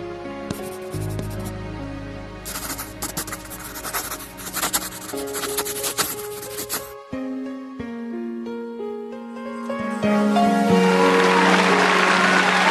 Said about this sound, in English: Slow burn with the applause. It was. They needed a moment to fully process.